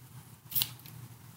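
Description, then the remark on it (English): A single quick spritz from a pink spray bottle, a short bright hiss lasting a fraction of a second over a steady low hum, with no voices. “I don't have a pink spray bottle, all right?”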